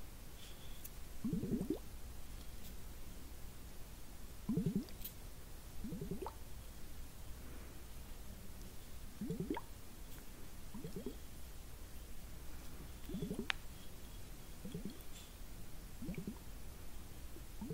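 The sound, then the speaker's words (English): Blue liquid bubbling inside glass facial globes: soft, low gurgling pops repeat every second or two, about ten in all, over a faint steady hiss, with no talking. “Such a fun sound. Little bubblings.”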